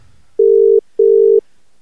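Two steady electronic ringback tones of an outgoing phone call, each about 0.4 seconds with a short gap between, loud and clear with no one talking.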